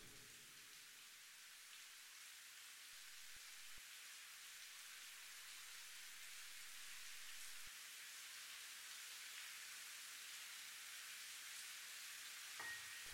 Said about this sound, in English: So much rain and darkness. How could anybody make it out of here? An endless night and an endless downpour.